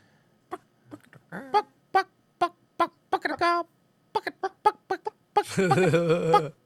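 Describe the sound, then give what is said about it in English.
A voice imitates a chicken clucking, referred to as Brendan Schaub's chicken: a string of short, irregular clucks, some in quick pairs, building to a loud, drawn-out squawk at the end. “The chicken, Brendan Schaub.”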